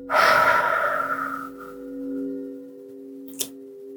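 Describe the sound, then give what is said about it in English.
A single deep, airy breath, inhaled through the nose and exhaled through the mouth, fading over a steady low humming drone, with a faint click near the end. “Two more times, a deep inhale through the nose, exhale through the mouth.”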